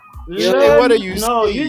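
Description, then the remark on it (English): Stray cats yowling outside in drawn-out, wavering cries that rise and fall in pitch, overlapping into one continuous moaning wail lasting under two seconds. “Ooh, these cats are crying here outside.”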